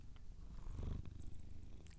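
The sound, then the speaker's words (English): A cat named Louise, a female, purrs steadily, a low continuous rumble with a faint rhythmic pulse, heard on its own without talking. “Oh, she's purring good.”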